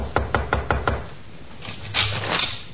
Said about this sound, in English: At 2 a.m., John awoke, looked at his wife. Then he stumbled to the door of Joy's room and knocked.